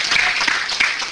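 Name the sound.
audience applauding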